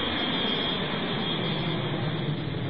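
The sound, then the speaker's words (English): Brunhilde's plane takes off, its jet engine roaring steadily and loudly, a dense continuous rumble with a hissing edge that holds constant throughout, with no voices. “Running to the platform that had brought her down to the cavern, they board her invisible plane, and the platform rises to the surface just in time for them to see Brunhilde's plane take off.”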